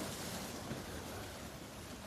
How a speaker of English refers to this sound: After a while, you notice a huge wave coming toward you, but you are not afraid.